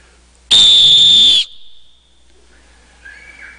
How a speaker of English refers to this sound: Maybe it's time for you to blow your rescue whistle and call out to the light of the world.